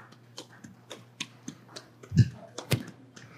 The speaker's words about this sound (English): And then a couple of people, you know, they get maybe a golf clap, right? Can you guys, anybody good with golf claps? What do we got?